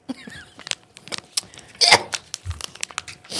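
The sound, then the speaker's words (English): Irregular crinkling and rustling of a plastic wrapper being pulled open, with sharp crackly bursts and a louder tearing rip in the middle. “How you open that?”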